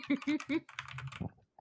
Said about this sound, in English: The typing. Doing some intense calculations.